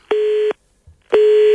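Two steady, moderately loud tone bursts from the ringing of an outgoing phone call to someone called at random, each lasting under half a second with a short pause between them. A faint low thump sits in the gap, and no one speaks.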